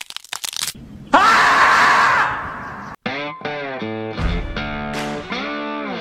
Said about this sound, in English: Play the screaming beaver bumper.